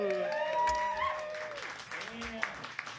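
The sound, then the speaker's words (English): An audience applauds steadily, a dense patter of many hands clapping, mixed with whooping and cheering voices rising and falling over it, the crowd noise gradually thinning toward the end. “of applause for them.”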